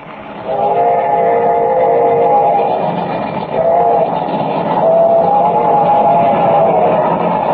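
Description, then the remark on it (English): A train whistle blows loud and long for several seconds, its steady, slightly wavering tone riding over the rumble and clatter of a moving steam train that left Larimer and is now about 15 minutes from Rainbow Bridge. “Instead of leaving Larimer at 6:00, the train left at 5:00, and is now only 15 minutes from Rainbow Bridge.”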